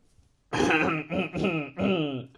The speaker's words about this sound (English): I'm clearing my throat.